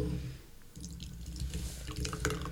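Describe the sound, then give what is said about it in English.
A jello shot squeezed and poured out of a can, with soft gurgling and a run of quick drips and splats over a low background rumble. “Well, it's coming out a little easier. Well, at first. You just got to squeeze the can.”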